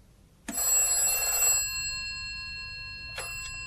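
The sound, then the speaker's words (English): An old-fashioned office telephone bell rings loudly, a bright metallic trill that rings out and lingers, then a second ring begins just before the end; it is a call from Lannion to Maigret. “I went home myself for a few hours' sleep, returned to the office, and was just about to phone Lannion to put him in the picture when...”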